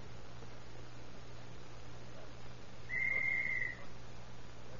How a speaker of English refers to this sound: He went right through that glass door when you blew that whistle.